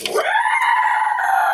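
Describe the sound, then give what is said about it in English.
A person lets out a sustained, shrill scream imitating a creature, loud, rising sharply at the start then holding a strained, raspy pitch for over a second. “screams down at you.”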